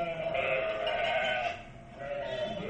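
Sheep bleating in two wavering, drawn-out bursts, the first long and loud, the second starting after a brief dip, with no talking.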